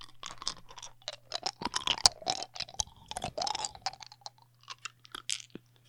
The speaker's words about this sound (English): I found my dice bag, but I gotta be quick. So here's my dice. Here's what it sounds like when I eat my dice.